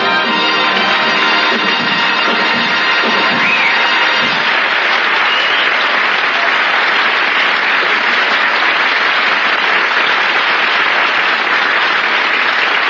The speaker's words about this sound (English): Hoagie, I could even hear the applause.